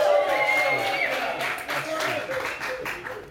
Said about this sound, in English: you can clap. That's clap. That's a clapper.